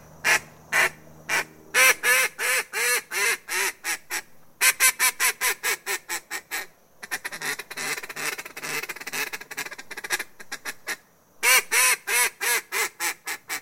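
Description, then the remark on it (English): Quarterback Devlin "Duck" Hodges, a world champion duck caller, blows a duck call in rapid, rhythmic bursts of loud quacking, with runs of clipped quacks broken by a stretch of fast, rattling chatter, all clear with no talking. “That was literally Duck Hodges duck calling.”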